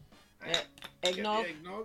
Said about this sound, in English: Let's get back on board with Christmas, shall we? Yeah, go on. Do a Christmas cheers. Have a great Christmas.